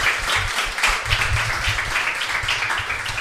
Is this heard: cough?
no